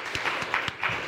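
A short burst of applause: steady, dense clapping with a few sharper claps standing out, continuous for about a second, with no voices over it.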